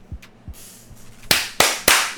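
Three sharp hand claps ring out in quick succession, each a bright, loud burst with a short decay, evenly spaced over about half a second apart, following a few soft low thumps.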